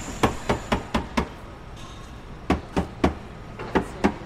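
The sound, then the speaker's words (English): Sharp knocking taps on a car's spare tire, struck from underneath the car by someone sprawled on the ground during a car search by officers: a steady run of five, a pause, then two quick sets of three, each strike crisp and fairly loud with no voices. “Underneath the car here, sprawled out on the ground, tapping underneath, tapping the spare tire.”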